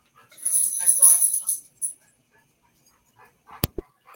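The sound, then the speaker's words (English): Dogs run into a room, with a second or so of panting, scrabbling and jingling, then quiet before a sharp knock or click near the end. “Excuse me while my dogs run in here.”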